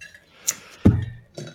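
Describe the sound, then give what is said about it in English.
A small pile of used-up pens, including gel pens, being handled: a light plastic click, then a fuller clattering knock, and another soft click a moment later. No one speaks. “Well, I have a couple right here. Hang on. See, this is my pens that I've gone through.”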